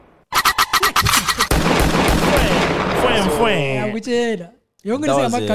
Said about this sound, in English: Yeah, I feel like we're abusing this gunshot now.